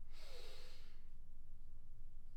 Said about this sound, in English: Breathing in with your nose into your belly, into your chest, into your crown. 1, 2, and breathe out. Slowing down the breath. And last one, breathing in, into your chest, into your crown.